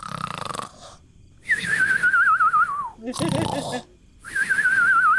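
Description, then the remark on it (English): A voice imitates snoring heard through a door, alternating rough, rasping inhales with high, wavering whistled exhales, giving two distinct tones of snoring. The pattern repeats about twice, fairly loud. “And actually, you hear 2 different tones of snoring.”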